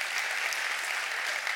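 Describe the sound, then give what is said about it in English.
A church crowd claps for the Lord on the Lord's Day: a steady, dense wash of many hands with no clear individual beats, holding an even loudness throughout without any voices. “Can you clap for the Lord?”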